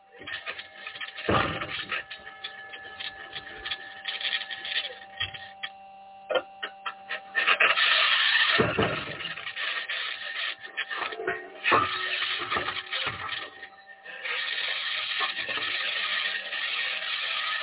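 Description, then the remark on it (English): Continuous gritty scratching and grinding of Mars rover wheels rolling over rocky Martian ground, punctuated by irregular clunks and bangs from the suspension system, over a steady electrical hum and whine from the rover's electronics. “That scratching is the sound of the wheels in contact with the surface of Mars.”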